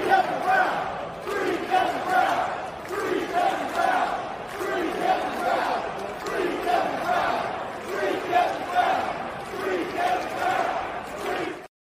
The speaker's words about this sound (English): Take a listen to this chant that was ringing through the crowd at Camden Yards last night during that Astros-Orioles game.